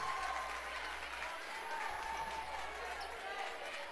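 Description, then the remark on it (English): A basketball crowd, with both sides yelling at the officials after a lane violation call during free throws, yells and roars in a steady, dense wash of voices that holds loud for the full few seconds, with no single voice standing out. “Well, neither side is going to be happy no matter what happens here tonight, but both sides are yelling at the officials at this point.”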